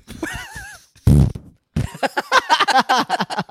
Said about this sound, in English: And he scooted the chair, but I thought he just stood up and farted.